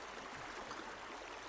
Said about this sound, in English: The pair of you kind of find yourself standing on the bridge, just a small little wooden bridge. You can hear the sound of the water just slowly streaming past.